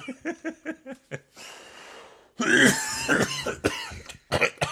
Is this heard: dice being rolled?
no